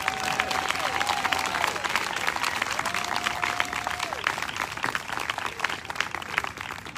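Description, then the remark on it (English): An audience applauds steadily for about seven seconds, a dense, even wash of many hands clapping at a constant loud level, with a couple of sustained cheers or whistles riding above it. “Let's give it up again”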